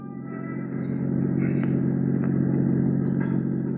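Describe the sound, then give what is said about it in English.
A car rolls slowly along, cruising an area street by street, its engine giving a steady, low rumble that swells slightly at the start and holds evenly, with faint mechanical clatter and no voices. “So I decided to cruise that area street by street.”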